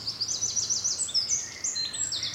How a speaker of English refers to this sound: Just appeared. Here he goes. Goldfinch. It's a proper orchestra.